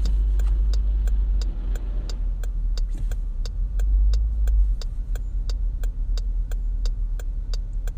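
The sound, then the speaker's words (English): A car drives through traffic beside a bus: a steady low engine and road rumble fills the cabin while a turn signal ticks rapidly and evenly throughout, with no one talking. “Come on, bus, let me over.”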